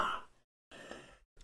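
cough

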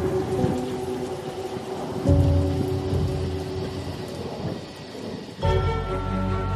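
thunder with rain

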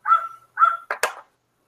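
dog barking

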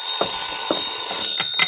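telephone ringing

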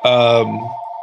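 telephone ringing

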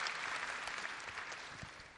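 audience applause

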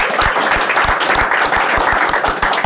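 audience round of applause

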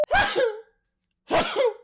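a sneeze

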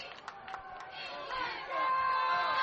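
football stadium crowd cheering

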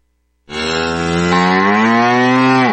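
cow mooing

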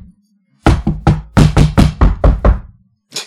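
knocking

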